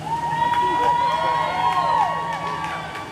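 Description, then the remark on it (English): An assembled crowd cheers and murmurs outdoors as a crane lifts a bronze sculpture from its granite plinth into the air, a steady wash of many voices with scattered shouts, while a sustained whistling tone glides and wavers above the noise. “At 2:31 p.m., a crane lifted the sculpture into the air, eliciting cheers from the assembled crowd.”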